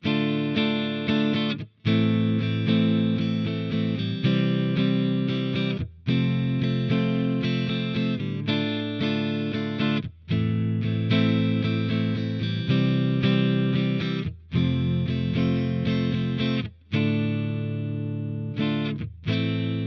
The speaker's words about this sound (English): I do have an amp sim from Amplitube of a Sunn 1200S, a similar circuit from the same time frame. I've disengaged the additional tremolo, reverb, and mid-boost controls, so you're hearing the core circuit of this series.